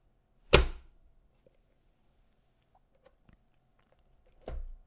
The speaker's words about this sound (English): That's me slamming that book shut.